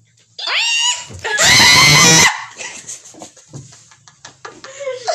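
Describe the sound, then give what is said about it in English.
Excited, high-pitched human squealing: a quick rising squeal, then a harsh, very loud shriek lasting about a second, trailing off into quieter chatter. “Y'all already know a bitch finna be screaming up in this bitch. Not screaming, really squealing.”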